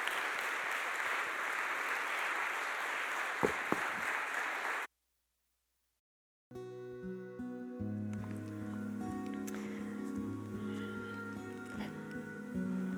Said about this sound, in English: Let's give them another round of applause, and then we'll spend a little time in silence.